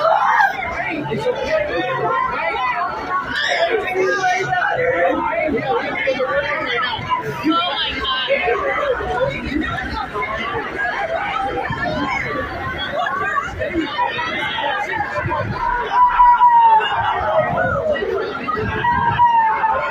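A dense crowd of parents screams, wails and shouts over one another outside a school during a shooting, as police hold them back, in a continuous, chaotic din that stays loud and unbroken throughout, with no single voice standing apart.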